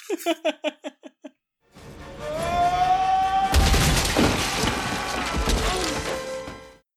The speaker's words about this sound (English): And this is the moment when Morpheus sacrifices himself to take on an agent one-on-one. And one of the best scenes, I think, in the entire movie, where he screams and headbutts through the drywall.